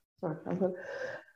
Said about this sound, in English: I have to sneeze. Bless you.